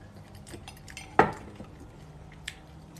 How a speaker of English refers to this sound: I'm eating some cereal, living my life.